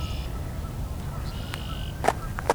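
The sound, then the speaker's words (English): Faint duck and goose calls drift over a steady low rumble of wind in a cattail marsh at Coots Paradise, with a few short, sharp call notes near the end. There is no talking. “A lot of geese here, a lot of ducks.”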